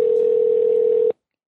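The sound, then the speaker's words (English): A phone's ringback tone on an outgoing call: one steady, loud electronic hum lasting about a second, then cutting off abruptly into silence. No voices. “I'm making a phone call.”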